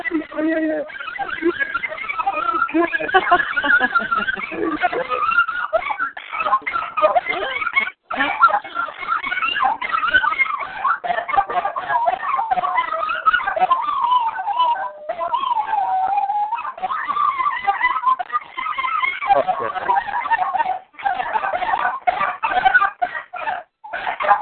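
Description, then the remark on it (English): Two dogs vocalize, overlapping in a long, nearly unbroken stream of whines, yips and warbling grumbles with rising and falling pitch, loud throughout with only brief pauses. “Now, which dog is that?”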